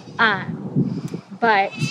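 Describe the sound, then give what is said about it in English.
Two high, quavering bleats from brand new baby goats on a farm, one near the start and another about a second later, with a low murmur of voices and rustling continuing in between. “We have new, brand new baby goats too. I hear them.”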